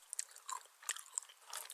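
Cowie eating trail mix: crisp, irregular crunching as it is bitten and chewed, a rapid series of sharp, bright crackles and snaps with short pauses between bites. The crunching is fairly quiet, and no one speaks.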